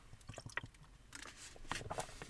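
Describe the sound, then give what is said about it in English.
Quiet wet mouth sounds of sipping water: a few soft slurps and squishy gulps of liquid in quick succession, with no talking. “Let me take a little sippy poo of water here and then I'll dive right into this.”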